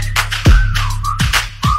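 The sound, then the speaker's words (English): A high, thin whistled tone slides and holds through a short musical passage, riding over heavy, booming bass hits that thump about three times. “Yeah, beat the bell, had to whistle like.”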